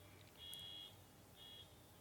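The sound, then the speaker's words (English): A car alarm sounds at 3 in the afternoon: two high-pitched electronic beeps, the first longer than the second, fairly faint over a low background rumble, with no one talking. “Whose fucking car alarm is that?”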